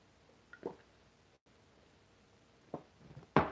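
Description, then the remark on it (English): Someone drinks a big glass of water in the morning: a few soft, wet gulping and swallowing sounds spaced irregularly, quiet, with brief pauses in between and no talking. “I drink a big glass of water every morning.”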